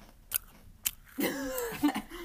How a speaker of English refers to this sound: You're just gonna munch.